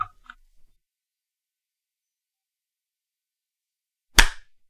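human body sound, hands clapping once

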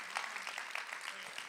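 crowd, audience clapping together

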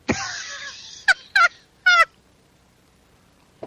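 bird, seagull call sound effect

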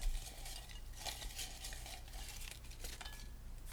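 household object, paper crinkling

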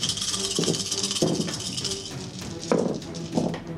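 household object, dice being rolled

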